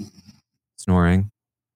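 Soft, low rumbling snoring fades out, then after a short silence comes one loud, harsh snore with a buzzy, slightly rising tone lasting about half a second.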